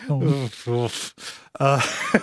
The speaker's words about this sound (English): Sorry, you really caught me off guard, and now I'm coughing. Caught myself off guard.